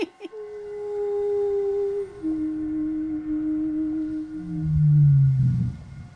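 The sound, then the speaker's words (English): A long, low whale call with sustained tonal moans that slide downward in pitch, ending in a deeper, louder groan, heard alone over faint underwater hiss. “I'm not even sure if I want to show it, because my voice is definitely much more sexual than the whale, but at least the whale is reacting.”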